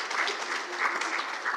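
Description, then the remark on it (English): A crowd applauds the children with steady, dense hand clapping, a sustained wash of many overlapping claps at even loudness, with no talking in between. “Give all of our children a big, big hand clap.”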